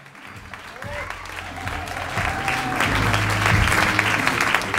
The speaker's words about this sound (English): Thank you for the polite applause. How about a hand for all the dope stories y'all heard?